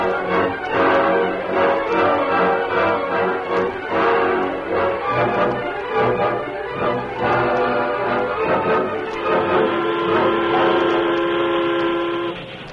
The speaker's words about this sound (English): The train was steaming up a long, gradual grade toward them.